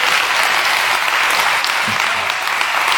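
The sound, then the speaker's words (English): Steady, dense applause from a sizable audience, many hands clapping at once in a continuous wash of sound for several seconds, loud. “And it's, you know, we clap in here, but we are children of dispersion in our society, in our culture.”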